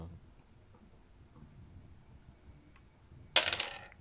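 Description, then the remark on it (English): After a few quiet seconds, a small hard die drops and clatters briefly on a tabletop, a sharp bright rattle that bounces a few times and settles within half a second. “Wait. A dice. Again.”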